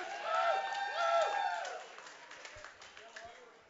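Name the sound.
audience applause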